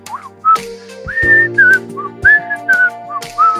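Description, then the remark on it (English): Someone whistles a bright, lilting melody in a string of clear, gliding notes, fairly loud, over a soft sustained instrumental backing. “Get ready to wet that whistle once more.”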